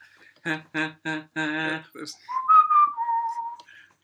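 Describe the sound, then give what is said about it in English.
Four short voiced notes, sung or hummed, lead into a brief whistled tune of a few sliding notes. It's clear and fairly loud, with no talking over it. “Were you whistling the theme tune for...”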